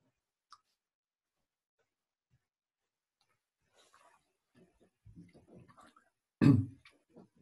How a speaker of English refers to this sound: So far, let me just have a sip of the water, if I may.